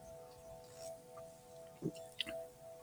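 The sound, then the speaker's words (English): A single short slurping sip of the morning's first cup of coffee, followed by a light clink of the mug being set down, over a faint steady electrical hum. “I'm here with my first cup of coffee.”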